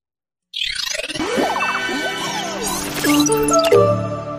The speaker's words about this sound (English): That's the chime. That new, new, new, new. Yeah. But that's specifically the one from the 25 years. 25-year... That was their anniversary.